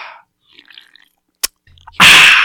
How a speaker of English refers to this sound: Slurping in. I just really want to get that sound bite in.